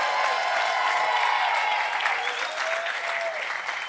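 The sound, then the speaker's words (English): An audience gives God a 5-second praise clap, a dense, steady wash of many hands applauding at an even loudness for several seconds, with a faint shout or cheer rising briefly through it. “Give God a 5-second praise clap right now.”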